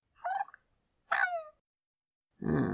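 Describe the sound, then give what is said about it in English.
A pet cat named Spider gives two short, bright chirping trills at someone's ankles, about half a second apart, followed by a brief burst of rougher, noisier sound. No one speaks. “Spider chirped in concern at his ankles.”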